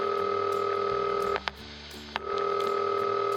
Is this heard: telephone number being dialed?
yes